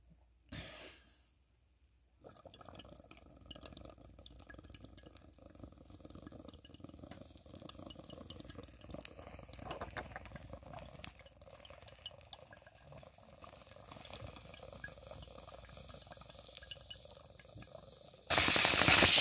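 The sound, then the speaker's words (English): A long, steady bubbling draw of smoke pulled through water, a low gurgling rumble that runs continuous for about sixteen seconds, ending in a sudden sharp burst of air. “Final toker of the podcast? Yeah. It's a big toke, too.”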